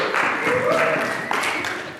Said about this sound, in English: Hey, let's give him a round of applause.